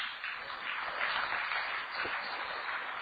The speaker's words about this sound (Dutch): Ik wil graag nog één grote man introduceren. De grote man die de rest van de dag voor jullie gaat verzorgen. Graag een grote applaus voor